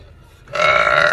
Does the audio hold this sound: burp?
yes